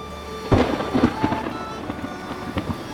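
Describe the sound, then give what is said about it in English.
A deep, rumbling roll of thunder sounds from far off, with a low boom near the start followed by softer rumbles, over a steady hiss of rain. “But thunder rolled in the distance.”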